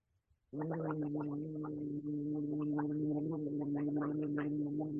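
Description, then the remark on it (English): After a brief silence, a person gargles alcohol in one long, unbroken gargle, a steady low voiced hum with rapid bubbling rattles on top that lasts about four and a half seconds. “Now, I mean, that alcohol, is it the alcohol that's making it hurt, or is it the just the length of the gargle itself?”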